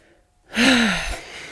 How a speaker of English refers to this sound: You can tell by my breathing that this is hard for me to talk about.